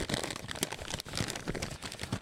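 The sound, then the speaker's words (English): Busy rustling and crinkling of paper letters for a couple of seconds, with irregular crisp bursts as sheets are handled and crumpled, no voices over it. “The only place in the world that has emails that actually sound like real paper.”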